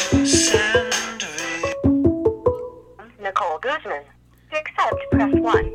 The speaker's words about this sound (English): Oh, I'm getting a call. How do I answer? Oh, God. Why isn't that coming through my phone? That's weird. Where is it coming through? Ah, here it is.